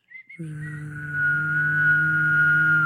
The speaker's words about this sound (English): Does anyone know how to hum and whistle at the same time?